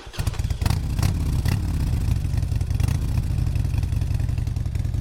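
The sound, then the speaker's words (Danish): A motorcycle engine rumbles loudly and steadily, a deep throbbing drone with a few sharp clattering bursts near the start, continuing without any voices. “Her tog han vejfotos af dem fra bagsædet på en motorcykel.”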